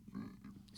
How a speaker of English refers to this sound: I got a burp.